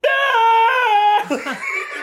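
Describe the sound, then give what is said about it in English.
A person lets out a loud, sustained battle scream, imitating Thor's blood-curdling war cry from the Avengers Assemble scene in Avengers: Endgame, holding a strained high pitch for about a second before it cracks into ragged, breathy yelling. “Like, Thor's the first one to start screaming. Sorry to our listeners who I just violently ear raped.”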